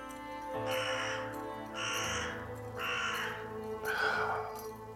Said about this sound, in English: Buzzards and carrion crows wheel over motionless, descending slowly among the huts. Everything is still and eerily quiet, but for the occasional call of a crow.